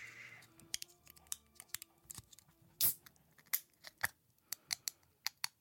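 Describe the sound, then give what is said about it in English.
A can of fizzy water being opened slowly: a string of sharp, irregular metallic clicks and crackles, with one brief louder hissing burst partway through. No one speaks. “No, just going to open a can of untitled fizzy water.”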